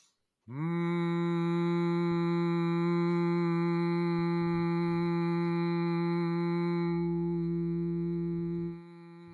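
A single voice hums one steady, low tone for about eight seconds, rich with even harmonics, then fades out. It is an example of conscious humming after deep breaths, on a tone comfortable to the speaking voice. No other sounds or speech accompany it.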